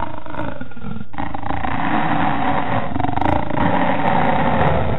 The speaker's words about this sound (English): But it didn't sound like any animal I'd ever heard before. In fact, it didn't really sound like an animal at all. It was more akin to a long, drawn-out belch. But it echoed around the forest like a loudspeaker system had been turned on.